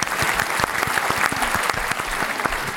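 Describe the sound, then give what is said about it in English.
Steady audience applause on The Nine Club Experience, a dense patter of many hands clapping at once, fairly loud, with no pauses or talking over it. “Do you like the applause? I think it sets a tone.”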